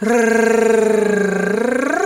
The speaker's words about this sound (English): And so if the lip trill is hard, you can also do the Spanish R, which is the tongue flap. So a lot of people start like tensing their tongues and nah. Don't do that. Let your tongue be like a floppy dog tongue, and it goes.